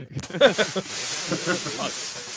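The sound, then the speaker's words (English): A steady, loud hiss of air rushing out of a balloon into a microphone fills the whole clip, broad and breathy, with a voice murmuring underneath it. “Yeah, hey, are you just letting a balloon into the microphone?”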